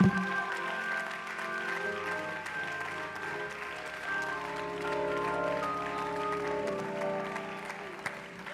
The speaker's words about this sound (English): Clap your hands and give the King praise.